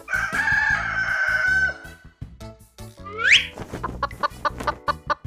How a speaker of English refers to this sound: Rooster.